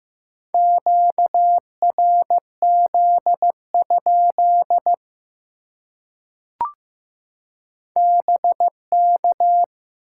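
A single steady beeping tone keyed on and off in dots and dashes, Morse code at 15 words per minute sending common QSO elements, with a brief click during a pause before the signal resumes.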